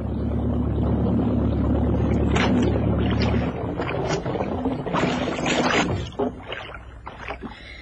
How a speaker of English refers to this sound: Okay, I'm going to cut the motor now.